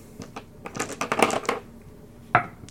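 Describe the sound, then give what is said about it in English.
Dice clatter across a hard tabletop during a tabletop game in a quick flurry of sharp clicks that taper off, followed after a pause by a single louder knock. “That was a black die, thank God.”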